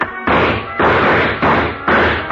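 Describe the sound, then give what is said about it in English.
A wooden chair is knocked over onto the floor, a series of four loud thuds and clatters in quick succession with no voices. “I knocked over a chair to give him something to shoot at.”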